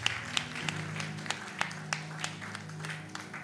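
An audience at Zoe Prophetic Ministry International claps in a steady, even rhythm, sharp hand claps landing roughly three times a second over low sustained musical tones. No one speaks.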